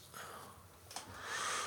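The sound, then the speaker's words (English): Soft nasal sniffing with a breathy hiss that swells near the end as someone sniffs a swirled glass of dark brown drink smelling of chocolate; no talking. “I'm going to sniff it now, by the way.”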